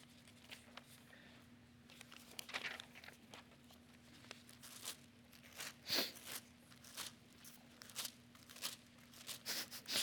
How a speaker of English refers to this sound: I love pages turning. It's such a beautiful sound. 1 Corinthians 13. Someone just ripped their Bible? It sounded like a shred.